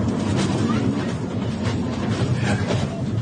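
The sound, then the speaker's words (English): Loud, steady aircraft cabin rumble on a bumpy flight, a dense low roar with a hissy wash on top and faint rattles and jolts shaking through it, no voices. “It's pretty bumpy inside that aircraft cabin.”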